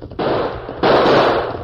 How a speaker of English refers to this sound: We can't. He's too close. Shoot it out. Shoot him. Missed him. Fire again. You know my gun hand's lame. I'll try.